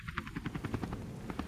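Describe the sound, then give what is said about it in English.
A rescue helicopter thrums nearby, its rotor blades beating in a fast, steady chop over a low engine rumble. The sound is fairly loud, with no voices. “Hey, I think that's one of the rescue choppers over there.”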